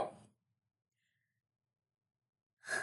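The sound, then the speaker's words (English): A sharp, breathy sneeze bursts out at the start, then a long stretch of near silence before another brief noisy burst cuts in at the very end. “Bless me. Bless you.”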